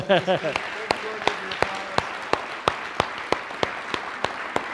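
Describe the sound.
An audience applauds in a dense, steady wash of clapping, with sharp, evenly spaced claps standing out above it. A brief voice rises at the very start.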